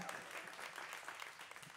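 An audience in an auditorium claps in a steady, dense wash of applause that stays even for a couple of seconds, fairly soft overall, with no voices standing out.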